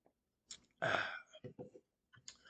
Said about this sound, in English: Hold on while I take a sip.